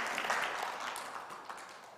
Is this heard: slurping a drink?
no